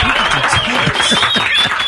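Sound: applause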